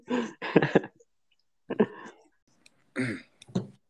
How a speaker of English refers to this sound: I just want to get one cough out of you. Just one cough.